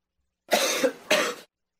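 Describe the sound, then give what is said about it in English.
Two sharp, dry throat coughs from someone who just ate chili pepper, in quick succession and fairly loud, with a short pause between them and silence before and after. “One of these coughs is from someone with a virus, and the other is from someone who just ate chili pepper.”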